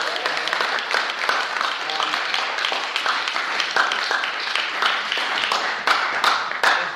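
An audience applauds steadily for several seconds, a dense, even wash of many hands clapping at a fairly loud, constant level with no speech over it.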